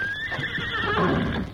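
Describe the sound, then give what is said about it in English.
A horse whinnies loudly, a shrill, wavering neigh that slides downward in pitch, with the shuffle of hooves beneath it, where horses wait in the shadows at the edge of a town. No one speaks. “Meantime, the Lone Ranger walked to the edge of town, where Tonto waited in the shadows with the horses.”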